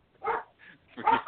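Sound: dog barking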